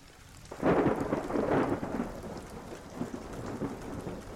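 Heavy rain pours down in a dense, steady hiss, with a deep rumble of thunder swelling early on before the downpour continues on its own.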